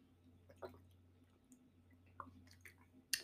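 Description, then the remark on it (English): Someone takes a few quiet sips of water, with soft wet gulps and small clicks spaced over a few seconds above a low, steady hum. No one speaks. “Small water break.”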